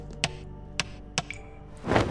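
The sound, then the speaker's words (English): A leaky faucet in a bathroom drips nearby, three sharp, distinct drops landing at uneven intervals over a steady low hum, followed by a brief soft rush of noise. “I used to hate the leaky faucet in our upstairs bathroom, but now, it reminded me of when things were a little easier.”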